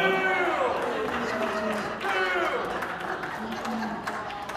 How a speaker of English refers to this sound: I will tell you guys, while you're booing the Texans, they got a quarterback that loves Jesus.